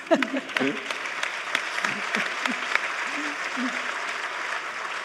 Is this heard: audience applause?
yes